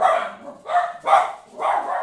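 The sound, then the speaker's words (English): A dog barks four times in quick succession, loud, with sharp, harsh barks spaced about half a second apart and no talking. “Boys, dogs went nuts.”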